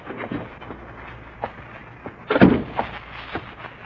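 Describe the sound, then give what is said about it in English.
The heavy main door of an office building swings open and shuts with a solid thud in the middle, preceded by faint creaks and rattles, over a steady low background hum; it is raining heavily at 8 o'clock at night. “I shrugged my way through the main door.”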